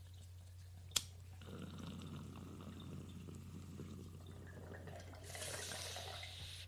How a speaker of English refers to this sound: Ooh. With the ice? That hits. Yeah. That little ice chamber in that bong's nice. Ooh, it's all Arctic-y.